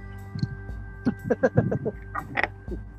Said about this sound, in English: One second. I'm gonna make some noise. I use vice grips to shut my garage door from the inside.